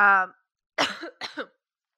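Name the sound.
cough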